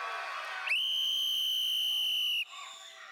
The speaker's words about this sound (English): I mean, when I blow that whistle, boom. I mean, it gets quiet.